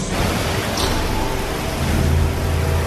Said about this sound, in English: Can I come in from the rain now?